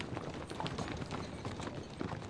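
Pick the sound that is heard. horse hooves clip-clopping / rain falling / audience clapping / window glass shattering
horse hooves clip-clopping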